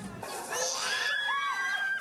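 High-pitched children's voices shriek and squeal together in a brief, excited burst, loud, with sustained piercing tones sliding up and down over about two seconds, as green cricket powder is dropped into pancake batter in Nagano, Japan.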